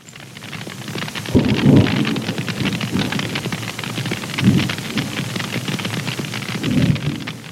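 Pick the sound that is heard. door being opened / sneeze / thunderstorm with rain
thunderstorm with rain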